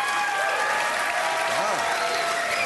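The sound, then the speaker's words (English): Sustained encore applause from a large studio audience at HBO's Real Time with Bill Maher, dense and steady clapping filling the space, with a faint voice briefly audible beneath the noise. “We got encore applause.”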